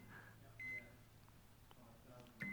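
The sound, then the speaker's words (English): A few short electronic beeps from a microwave oven keypad as it's set, spaced apart over a low background hum, with no one talking. “I just wanted to make sure we're prepared, which is why I've got the microwave here.”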